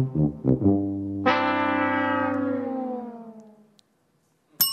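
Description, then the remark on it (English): A game show sound effect: a few quick punchy notes, then a long brassy tone that slowly slides downward and fades out, followed by a brief burst at the very end. “Is that The Price is Right? Sure is.”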